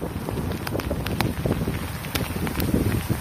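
Steady roaring rush of a heavy downpour, about 50 to 75 millimeters per hour, with buffeting wind gusts and scattered sharp ticks and taps of hailstones striking, during a major thunderstorm over Metro Vancouver. Loud and continuous, with no voices.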